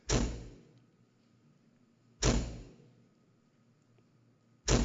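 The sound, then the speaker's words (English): A door slams shut three times, each a loud, heavy bang with a deep boom that rings out and fades, spaced a couple of seconds apart with no voices. “You'll find a door slammed in your face.”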